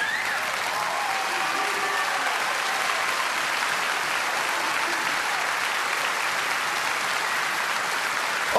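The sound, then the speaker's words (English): An audience in church breaks into sustained, loud applause for God, a dense wash of clapping that holds steady for several seconds without any talking. “He demands and deserves our greatest applause.”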